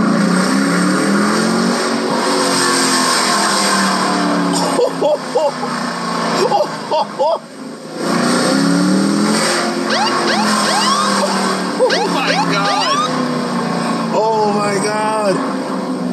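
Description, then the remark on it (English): A car engine roars loudly and steadily, then revs hard several times, its pitch climbing and falling back as it drops off the revs. “Oh my god, that light as it comes down off the revs.”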